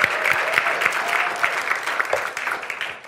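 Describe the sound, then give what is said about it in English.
A church audience applauds steadily for about three seconds to cheer on people about to be baptised that morning, dense overlapping claps forming a loud, even wash, with faint cheering voices mixed into the clapping. “Come on, let's cheer them on as we're going to be in baptisms this morning.”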